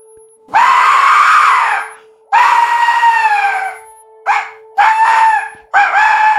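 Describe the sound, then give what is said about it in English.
A hollow, screechy hand whistle blown in five bursts, two long wavering ones followed by three shorter blasts, loud and high-pitched with a shrill, scream-like quality and no talking. “Oh, it does sound kind of screamy. You're getting close to the hollow screamy sound.”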